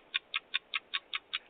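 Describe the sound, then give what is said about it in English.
A clock ticks rapidly and evenly, eight sharp, thin clicks in quick succession at a steady pace, heard alone with no voices and at a moderate, somewhat muffled level. “We got to get the clock and not the done sound.”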